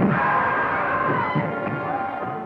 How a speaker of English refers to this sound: I mean, that's the kind of scream that emanates not from the funny bone, but from the depths of one's soul. It's the kind of scream you cough up during a nightmare, not when you're trying to make an audience laugh.